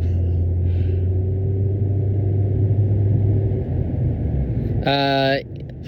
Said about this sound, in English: That was a car. That was a car thing.